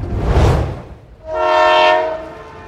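A train sounds: a loud hissing burst of steam, then a single sustained whistle blast lasting about a second before fading out. No one speaks.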